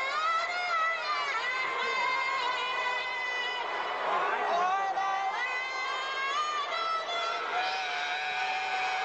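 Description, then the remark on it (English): A large stadium crowd boos steadily, a dense wash of sustained, droning voices that swells and wavers without a break for the full nine seconds, loud throughout. “You hear the booing, right? Do you hear the booing? It's horrible.”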